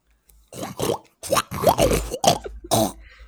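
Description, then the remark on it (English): Several short, voiced snorting bursts in quick succession, people imitating a pig's oink, loud with brief gaps between each grunt. “All right, well, I think let's all try to make a pig sound, and we can get out of here.”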